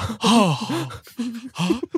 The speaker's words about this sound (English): Oh, I feel dizzy now. Oh shit, I was breathing. I was hyperventilating.